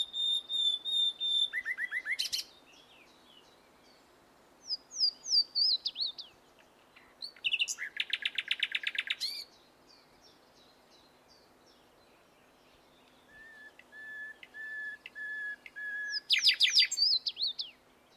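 A songbird sings a series of separate phrases mixing rapid buzzy trills with high whistled notes, each burst followed by a short pause, heard clearly and alone against faint background hiss.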